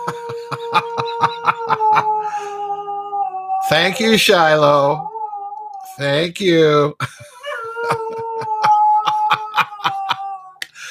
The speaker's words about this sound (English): My dog decided she wanted to start howling.